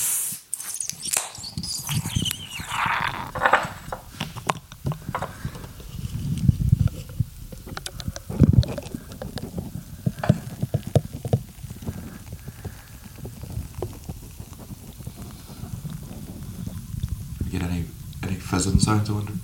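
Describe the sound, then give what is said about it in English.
A Beamish stout being poured into a glass: a soft, steady fizzing hiss with intermittent gurgles and bubbling, fairly quiet overall, with murmuring voices at times. “So it's pouring us in a Beamish here for a Moving Target.”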